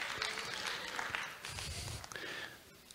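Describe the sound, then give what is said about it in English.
A roomful of people claps steadily for a few seconds, a dense patter of hands with some faint murmuring underneath. “Yes, you may clap.”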